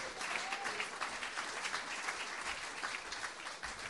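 Sustained applause from an audience fills the full four seconds, a dense, steady patter of many hands clapping at fairly close range, with no one speaking over it.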